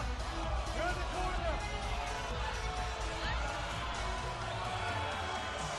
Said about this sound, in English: and the crowd not too pleased with that call.